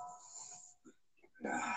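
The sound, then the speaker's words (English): A phone ringtone chimes like church bells, with ringing tones that fade into a short pause before another bright, full burst of bell-like sound starts up. “I keep forgetting that's Mark's phone. Church bells.”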